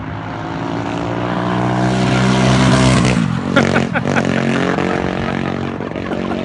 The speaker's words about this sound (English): So if you're listening, that was a man on what appeared to be a mobility scooter, which had probably received a bit of an upgrade. Yes, absolutely. Well, it's definitely doing more than 20 mile per hour, isn't it?